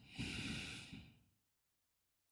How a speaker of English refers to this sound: Inhale through the nose. And exhale through the nose.